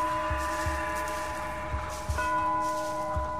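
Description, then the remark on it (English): Bells ring out at sunset with a sustained, shimmering hum of overlapping tones, set against a low rumbling background that swells now and then. No voices are heard. “The bells. Sunset. We're doomed.”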